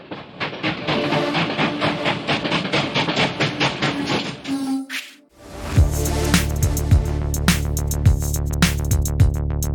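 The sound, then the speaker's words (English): A train sound effect opening the show Crazy Train of Thought clatters along with steady rhythmic clickety-clack, then after a brief pause a louder, bright train sound returns with sustained tones and regular clacks, prominent with no talking. “On aboard the choo-choo train!”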